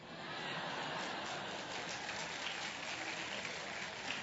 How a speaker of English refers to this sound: I notice a lot of you men aren't clapping it that way. I don't know why that is, but maybe for obvious reasons. All the gals are,